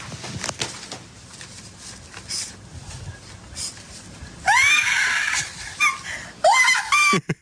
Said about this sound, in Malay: Siapa tu yang jerit? Mak dia.